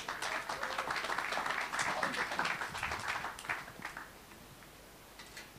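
A crowd applauds the next speaker being introduced, with dense, steady clapping for about four seconds, then the clapping thins out to a few scattered claps before fading.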